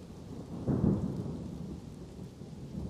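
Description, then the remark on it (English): A deep roll of thunder swells near the start and rumbles on beneath steady rainfall, a heavy low growl that lingers as the downpour continues. No voices. “you look over towards where the thunder is coming from.”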